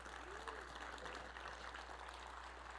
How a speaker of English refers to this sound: Can we just give the youth worship team a big round of applause?